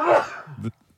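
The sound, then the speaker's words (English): A single loud, sharp sneeze bursts out and fades over about half a second, followed by a brief low murmur before the sound drops to near silence. “Bless you.”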